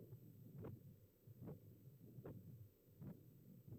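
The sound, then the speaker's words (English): A fetal heartbeat on Doppler ultrasound: steady, rhythmic whooshing pulses, about four beats over a muffled, washy background hiss, with no talking. “So detecting the heartbeat at its earliest stage, this is done through what's called Doppler ultrasounds.”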